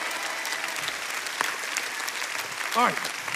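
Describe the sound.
A dense, steady wash of many hands clapping at an even loudness throughout, with a brief voice calling out over the applause near the end.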